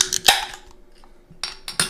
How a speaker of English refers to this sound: Cheers, guys. Cheers. Cheers. That was a harmonious beer opening there.